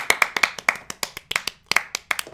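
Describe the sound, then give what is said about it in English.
An audience claps hands in a loose, roughly steady rhythm, about a dozen sharp, bright claps with a few slightly out of sync. No one speaks. “Everybody clap your hands. Clap.”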